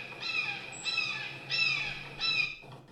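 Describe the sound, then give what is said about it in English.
A shrill bird cry sound effect, not a hawk, repeats four times in steady succession, each call harsh and piercing with a slightly raspy, descending edge, loud with no one talking. “I mean, it's a fucking bird, okay? I just didn't get the right hawk sound effect, all right?”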